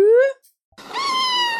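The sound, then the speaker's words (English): A cat meow sound effect made with a slide whistle: a short rising mew, a brief pause, then a longer, loud, drawn-out meow that slowly falls in pitch. No talking. “Because we couldn't get the lightning sound, so we had to get a slide whistle cat.”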